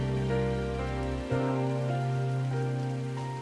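Steady rain patters on a surface in a continuous hiss, mixed with sustained musical tones and a low bass note that shifts partway through.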